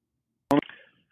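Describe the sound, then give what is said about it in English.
A single sharp cough bursts out abruptly, loud and rough with a voiced, throaty tone, then trails off quickly into silence. No one speaks. “Again, that's something people say, excuse me, just going to cough for a moment.”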